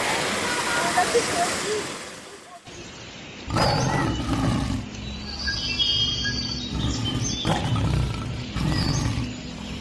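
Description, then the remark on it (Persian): An artificial waterfall built in a zoo enclosure for large white swimming birds pours with a steady, hissing rush of water, shifting partway through to a deeper, louder roar as it continues throughout, with faint voices in the background. “اینجا چون براشون یه آبشار مصنوعی هم گذاشتن، این صدا مال اونه، صدا خیلی زیباییه.”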